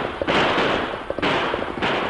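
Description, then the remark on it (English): Three loud gunshots ring out about a second apart during a horseback chase, as the Lone Ranger and Tonto pursue three crooks, each sharp crack followed by a long, roaring tail. A faint rhythmic patter runs underneath, and no one speaks. “You wound one of them. Him fall from saddle. That leaves two to go.”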